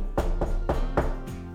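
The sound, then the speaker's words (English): Five steady knocks on a door marked Locag's room, evenly spaced and fairly firm, each a dull, resonant thud over a low hum, with no voices. “He pushes down the fluffy woolen neck piece of his jacket as he knocks on a door.”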